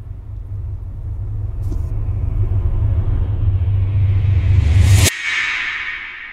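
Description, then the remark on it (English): A cinematic trailer stinger: a deep rumbling drone swells with a rising whoosh for about five seconds, then cuts off abruptly into a hissing, airy tail. No one speaks. “This doesn't actually have the word stinger in it, but this is what it sounds like by itself. It sounds very like movie trailer.”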